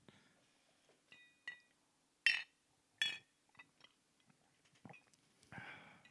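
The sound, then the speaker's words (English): Glasses of whiskey clink together in a toast to 2018, several bright, ringing taps spaced irregularly over a few seconds, with small handling sounds between them and no talking. “I am going to toast 2018 with this.”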